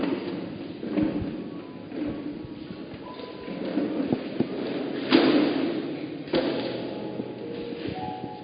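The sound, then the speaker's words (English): Chairs being counted out, shifted and set down, five in one place and seven in another, with scraping, knocking and soft thuds, including two sharper knocks near the end, over a low murmur of background noise. “Anthony, how many chairs are here?”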